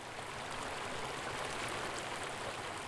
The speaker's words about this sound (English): For me, a run there meant a mind clear and cool, washed clean by the sound of running water streaming from Diamond Lake at the trail's end.